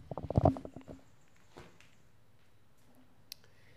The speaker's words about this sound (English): He's opening the fridge. He's coming back with the Pepsi.